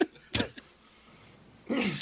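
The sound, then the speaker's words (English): An abrupt sneeze: a short sharp burst of air, a pause, then a louder breathy, voiced explosion near the end. No talking. “God bless you.”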